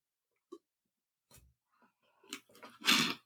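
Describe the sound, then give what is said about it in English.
Someone takes a quiet sip of water: a few faint mouth clicks and small wet sounds, ending in a louder breathy gulp or exhale. No one speaks. “I really do have to take a sip of water, so hold on.”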